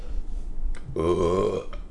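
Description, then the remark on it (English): A single long, loud burp, a rough voiced rumble lasting under a second, with faint room noise before and after. “Burp break.”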